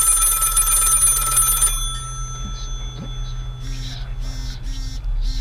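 mobile phone ringing

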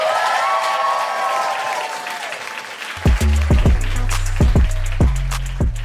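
audience applause and cheering

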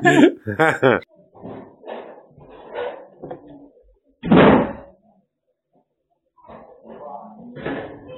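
door thudding shut

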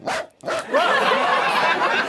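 dachshund barking

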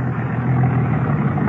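car passing by

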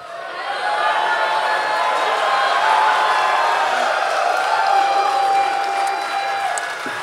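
audience cheering and whooping

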